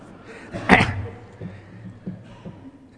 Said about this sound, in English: all that coughing, I must be making people uncomfortable.